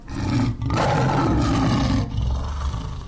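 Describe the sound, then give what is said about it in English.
A lion roars loudly, a deep rumbling growl that swells, pauses briefly, then surges again before trailing into a lower rumble. No one speaks. “My lion's not in here, is she? Oh, I sure hope there's not a lion in here.”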